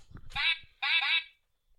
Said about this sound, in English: That's a duck. That's a duck, yeah. Okay. Is it like any duck you've ever heard in your life? I haven't heard any 6-bit ducks before.